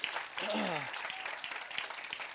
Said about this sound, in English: And would you just say a huge thank you to your pastors? Would you give them a huge round of applause?